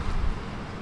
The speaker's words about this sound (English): Got bigger droplets of rain. Bigger droplets. We're okay so far, maybe. It almost felt like it was slowing down there for a second. It kind of did. And now it's picking back up a little harder.